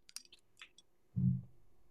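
A few light clicks and taps of a bottle and glass, then a short, low glugging pour of a shot of whiskey lasting under half a second, fairly quiet, with no talking.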